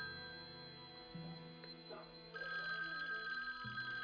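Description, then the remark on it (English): A telephone rings with a steady electronic ringtone, its pitch shifting between a few sustained notes and getting louder partway through. No one speaks over it. “Answer the phone.”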